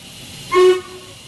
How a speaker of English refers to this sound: But Lottie got on a train and headed for Bath.